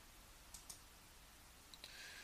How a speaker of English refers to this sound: As you hear the keys clacking, me multitasking.